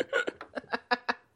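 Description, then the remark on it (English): A rapid coughing fit into a microphone, used as a show's sign-off: about seven short, harsh bursts in quick succession, fairly loud and evenly spaced, tapering off at the end with no talking. “It's just me coughing, having a coughing fit into the microphone.”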